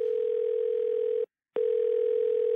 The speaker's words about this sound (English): Okay, call your agent right now. Okay, hold on. Okay, it's ringing.